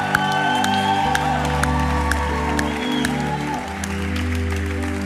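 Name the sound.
crowd cheering and applauding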